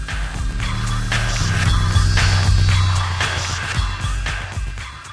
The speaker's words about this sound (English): both of the handheld walkie-talkies are put in transmit mode and moved over the tape recorder